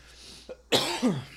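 A person who is getting over a cough coughs twice in quick succession, harsh, with a short rough second burst following the first. No talking.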